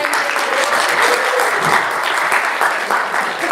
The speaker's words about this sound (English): Let's have some energy. Clap, clap.